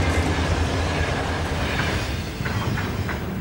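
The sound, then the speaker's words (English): A train bound for Moscow in 1959 rolls steadily along the rails with a dense, continuous rumble, with faint rhythmic clacks of wheels over track joints near the end. No voices are heard. “From there, on October 15th, 1959, he boarded the train for Moscow.”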